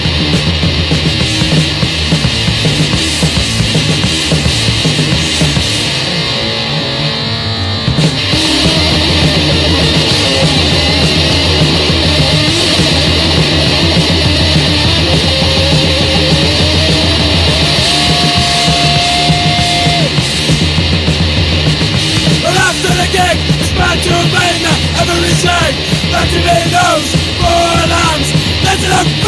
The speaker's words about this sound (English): And I'm just shouting and screaming, but that's the response to an anarchist regime.